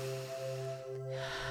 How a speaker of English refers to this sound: We're going to do some repetitions of breath. The pineal gland loves oxygen. Breathe. Circular breathing.